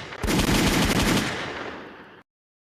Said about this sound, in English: Gunshots.